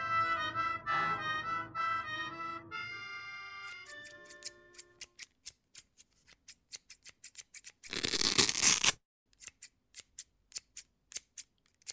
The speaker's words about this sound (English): I'm cutting my garter belt into thin strips so I can post a rudimentary message on the window